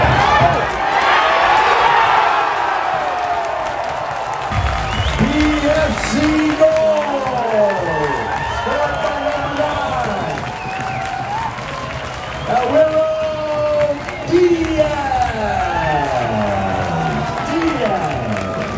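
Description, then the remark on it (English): A large soccer stadium crowd roars and cheers loudly for a few seconds after Diaz scores Pacific's first goal, assisted by Josh Hurd, in the fifth minute against Forge, then the noise settles into a steady din with prominent voices calling out over it. “Diaz's first goal from Josh Hurd got the crowd fired up.”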